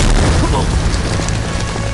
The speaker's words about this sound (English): Robin lands a powerful kick into Scarecrow's stomach, which sends him flying back and slamming hard into a burning wall.